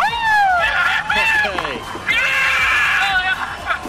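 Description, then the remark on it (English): A loud group of people cheering and shouting in celebration, with overlapping excited voices and whoops rising and falling continuously over a steady rush of wind or water. It is the Team Australia boat crew celebrating their victory at the 2022 SailGP final in San Francisco. “Ever wondered what a boat full of really happy Aussies sounds like?”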